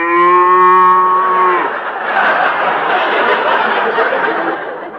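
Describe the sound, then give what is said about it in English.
A Holstein cow gives one long, loud, steady moo lasting over a second, then it breaks off into a wash of rough, hissing noise that continues to the end. “Those Holsteins can get pretty mean, you know.”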